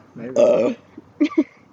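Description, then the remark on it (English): A low, rumbling burp lasts about half a second, followed by a pause and then two short, clipped vocal sounds. “All right, get ready to burp again.”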